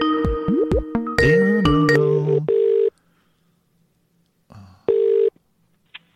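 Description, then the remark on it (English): An incoming phone call sounds: a quick flurry of dialing beeps and electronic tones, then two steady, loud ringing tones separated by a pause, with no one speaking. “Mr. Phone Call is here, ladies and gentlemen.”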